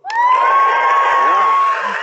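crowd cheering and applauding

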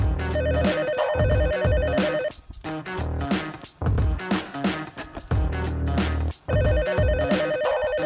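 telephone ringing

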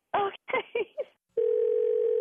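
telephone dial tone

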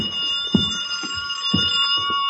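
telephone ringing

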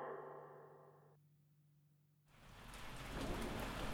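rain falling

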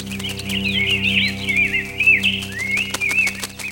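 birds chirping

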